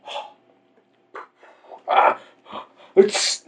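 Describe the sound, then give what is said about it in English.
A voice imitates sneezing with a few short, loud bursts, each ending in a breathy hiss, spaced unevenly across a few seconds. “Started sneezing and shit.”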